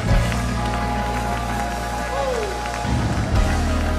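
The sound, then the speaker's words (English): An audience claps their hands together in praise to the Lord in a dense, steady patter of many hands, loud and continuous throughout, with sustained musical tones and scattered voices beneath the applause. “One more time, clap your hands unto the Lord and give him praise.”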